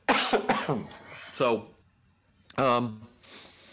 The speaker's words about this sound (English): I got a cough, hang on.